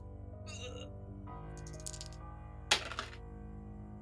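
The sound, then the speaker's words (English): A small amethyst die clatters onto a hard floor in one sharp knock with a brief rattle, after some lighter clicking, over a low background hum. “I've just dropped one on the floor.”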